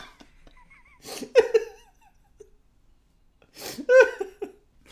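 Two sharp, voiced hiccups about two and a half seconds apart, fairly loud, each a sudden gulping burst with a brief trailing tail, separated by near-quiet with a few faint chirps.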